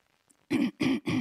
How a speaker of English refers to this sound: Let me clear my throat.